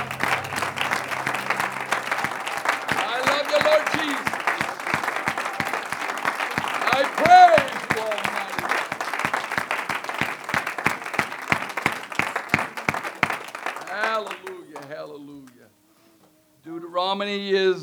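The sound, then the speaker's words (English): A large seated audience claps their hands steadily for about fourteen seconds, a dense rhythmic roar of hands that fades out, followed by a brief pause and then a man beginning to speak. “Would you clap your hands as you're seated?”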